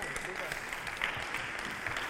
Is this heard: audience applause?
yes